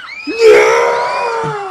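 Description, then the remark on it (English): A loud, sustained scream rises sharply and holds for over a second, layered with other frantic voices like a panicked crowd shrieking together, as Night-Night, Boobo and the Boogeyman gang, hit by Boogeyman's fear gas, run into the streets. “Night-Night, Boobo, and the Boogeyman gang succumb to the effects of Boogeyman's fear gas and run out into the streets, screaming in sheer panic.”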